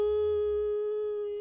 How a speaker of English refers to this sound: The reverberating echoes of the bells sounding pass along the shadowy corridor and slowly fade to silence.